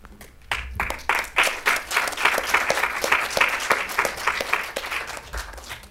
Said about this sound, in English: Maybe we can just give them all a big round of applause one more time and go and have some lunch.